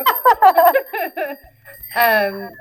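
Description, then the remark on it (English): A voice imitates a ringing bell with a quick run of sung, bell-like dings, followed by a longer drawn-out falling tone, all fairly loud. “Ring that bell for me, would you? Ding, ding, ding.”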